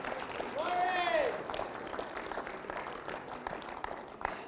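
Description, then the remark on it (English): A church audience claps their hands at the preacher's call during a sermon, a dense, steady patter of many claps lasting the whole stretch, with a brief rising-and-falling vocal cry over it near the start. “Somebody clap their hands right now.”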